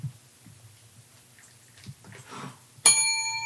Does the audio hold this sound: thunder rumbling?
no